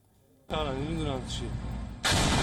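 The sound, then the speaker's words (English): After a brief hush, a loud, booming explosion from a drone attack on a military industry factory near Isfahan, Iran, erupts and rumbles on. A wavering, voice-like tone rises over it, and then a second, even heavier blast hits near the end. “On Saturday, a loud explosion struck a military industry factory near Iran's central city of Isfahan.”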